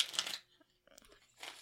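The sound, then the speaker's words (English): A deck of Trivial Pursuit cards being shuffled: two short, quiet bursts of papery riffling, separated by a pause with a few soft clicks and taps. “I just shuffled those cards like a boss.”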